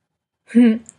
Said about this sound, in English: Could you hear my cat meow in the background? That's Bandit. I'm going to leave that in because he's a chatty cat.